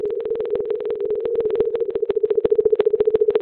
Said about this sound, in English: Atlantic mink whale.